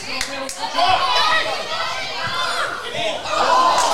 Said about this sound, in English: Crowd getting behind everybody involved, which is great to see.